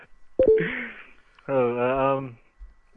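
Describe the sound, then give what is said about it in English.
Computer notification alert sounds: a short electronic alert tone pings near the start, followed by a brief buzzy, steady tone with a rich harmonic edge, both clear against a quiet background. “I've got notifications popping up all over the place.”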